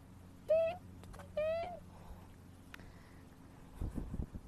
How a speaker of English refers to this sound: Get that? Get that? Hear the birds.